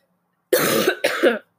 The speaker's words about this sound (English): Excuse me, I'm about to cough.